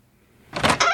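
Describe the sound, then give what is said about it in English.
A front door swings open after a moment of quiet, a loud scraping rush that surges, briefly dips, then continues to the end, with no voices. “No, that's the front door.”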